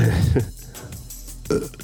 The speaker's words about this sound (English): Did you burp? He did now.